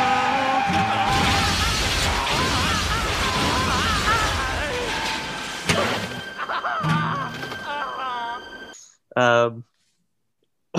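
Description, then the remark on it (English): A bus skids off the road after the driver misses a turn, in a loud, chaotic rush of rumbling and clattering, with voices yelling over it, then a short silence and one last brief jolt; a passenger is ejected from the bus. “This, of course, leads to a triple take of Van Driesen being ejected from the bus because the driver misses a turn.”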